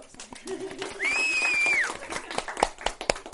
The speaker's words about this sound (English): We're clapping.